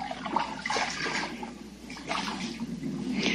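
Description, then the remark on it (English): Water of a creek or pond flows and splashes steadily, with a continuous bubbling rush and occasional louder gurgling surges. “Today's story is about little fish and tadpoles that live in a creek or a pond just like this one.”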